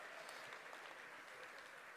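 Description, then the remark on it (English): Steady applause from a crowd giving the Lord a clap, a dense wash of many hands clapping at once with no clear rhythm, holding an even loudness throughout with no voices on top. “Give the Lord a clap, man.”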